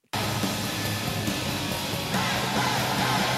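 A classic arena rock song blares through the speakers at a Canucks hockey game arena, loud and steady, its driving band sound washing over a dense roar of crowd noise that swells slightly partway through.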